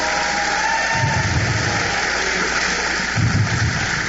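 An audience claps their hands for the worship band in dense, continuous applause, a steady wash of many overlapping claps that swells slightly around the start and again near the end, with no talking.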